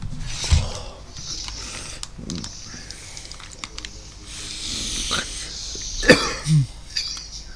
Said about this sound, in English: What happened? What did you cough?